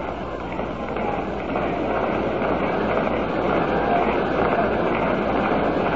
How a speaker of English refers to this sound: And now you hear the Tiger fans start that rhythmic applause.